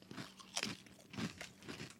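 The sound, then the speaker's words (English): Crisp crunching of someone biting and chewing spicy potato chips, with several sharp crackly bursts in an irregular chewing rhythm and no talking. “And I like the crunch, too. They don't look crunchy, but they really are.”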